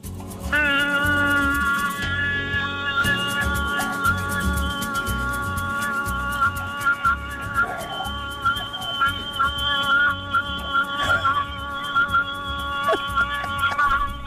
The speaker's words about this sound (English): do you have your horn ready, girl? It is.